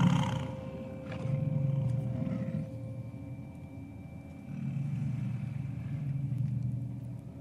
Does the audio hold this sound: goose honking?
no